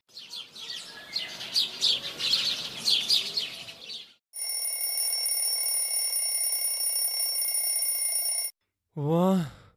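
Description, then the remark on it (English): Birds chirp briskly, then an alarm clock, set for the wrong time, rings with a loud, steady electronic tone continuously for about four seconds before cutting off, followed by a brief rising and falling vocal sound like a groan or yawn. “I set the alarm at the wrong time again, didn't I?”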